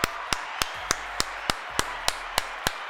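A single pair of hands claps about ten times in a steady, evenly spaced rhythm. Each clap is sharp, with no talking underneath.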